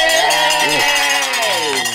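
Bells ring continuously in bright, layered metallic tones that waver and bend slightly in pitch, staying loud and steady for the whole two seconds with no talking.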